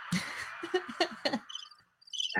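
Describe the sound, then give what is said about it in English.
A short burst of cricket chirping played from a soundboard sound effect, with rapid, high-pitched pulsing chirps that play clearly and fairly loudly, pausing briefly before chirping again at the end. “I don't know if you have a soundboard round of applause button or whatever, but you should certainly play one for yourself, or you could play the cricket.”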